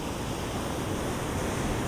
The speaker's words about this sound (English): In this guided meditation, we'll use the soothing sound of ocean waves to help you relax and fall into a deep, peaceful, and restful sleep.